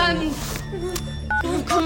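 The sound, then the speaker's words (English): A short electronic cell phone keypad beep as 911 is dialed sounds briefly amid ongoing voices and background sound, clear. “Oh, just I have to call 911.”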